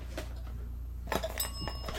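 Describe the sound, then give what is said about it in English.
A small news bell gets a weak, quick ring: a couple of faint metallic clinks around the middle, with a thin ringing tone that fades over a steady low hum. “Let's ring the news bell.”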